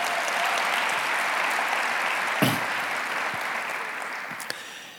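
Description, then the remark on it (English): Sustained applause from an audience, a dense steady wash of clapping lasting the whole stretch and fading slightly toward the end, with a few sharper individual claps standing out. “Can we also give him a round of applause?”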